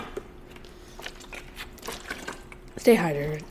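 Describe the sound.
Quiet, close-up sips of water: a scatter of small wet clicks and slurps over a few seconds, ending with a person's short, drawn-out voiced exclamation.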